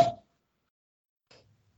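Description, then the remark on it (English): A slightly damaged bottle is opened with a sharp, loud pop that fades within a quarter second, then a brief, fainter rustle follows after a pause of silence. No one speaks. “We'll have to check the inside integrity of the bottle once it opens.”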